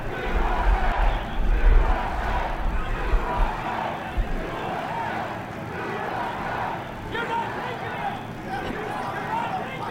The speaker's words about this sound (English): And now people are chanting USA.